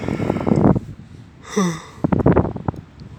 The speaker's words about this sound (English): Sorry for yawning again.